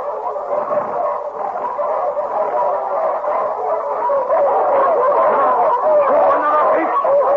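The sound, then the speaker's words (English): A pack of wolves barks and yelps in a dense, overlapping chorus, loud, with wavering howl-like cries running unbroken for several seconds. “When we run, the wolves chase us as fast as they can, do they not?”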